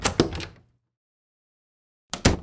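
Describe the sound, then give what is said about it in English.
A door to a recording room opens with a brief rattling clatter, then after about a second and a half of silence it closes with a second, sharper thump, both moderately loud. “I really need to start locking that door when I come in here to record.”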